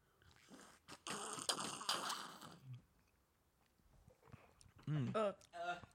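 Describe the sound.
A loud, wet slurp of the Birthday Boozer, a boozy cocktail that looks like milk, lasts about a second and a half, a noisy sucking burst that trails off, followed by a short pause and then someone speaking.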